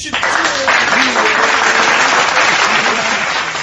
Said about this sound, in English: Oh, we got applause.